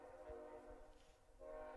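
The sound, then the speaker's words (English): A train horn blares in a sustained, chord-like tone, dips briefly, then sounds again at full strength, with a low rumble underneath and no voices. “Fucking Trains, man. Well, I don't think your horns are loud.”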